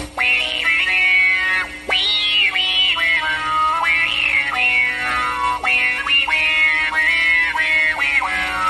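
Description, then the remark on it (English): A guitar effect setting with a wah-wah feel: a sustained, buzzy tone whose pitch repeatedly sweeps up and down in vowel-like swells, about once a second, loud and steady with no talking. “That's kind of a cool setting. It has sort of a wah-wah feel to it.”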